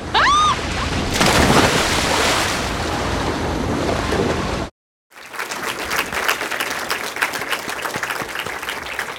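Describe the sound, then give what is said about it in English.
Loud rushing of ocean water and surf as people jump off a boat into the sea in 1987 fills the first few seconds, breaks off in a brief silence, then returns as churning, splashy water with crackling bursts. “I want you to jump in the water and I want you to come over to my house.”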